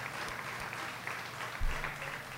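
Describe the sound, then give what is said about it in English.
Audience applause fills the room, a dense steady wash of many hands clapping at moderate volume, with a brief louder swell partway through. “Give them a round of applause, please.”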